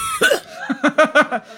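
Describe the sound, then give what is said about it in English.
A fairly loud series of short coughs: one sharp cough, then a quick rhythmic run of three or four more, voiced and slightly theatrical, with no talking. “We're not heckling you. We're just coughing conveniently.”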